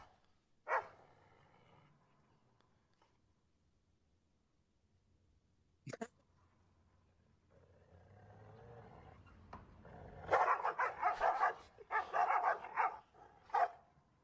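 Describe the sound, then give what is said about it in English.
Dogs bark: a single sharp bark, a lone yelp a few seconds later, then a loud, rapid flurry of overlapping barks near the end. No one speaks. “I saw this as well, and I've seen some dogs behave like this before, but I think this is funny.”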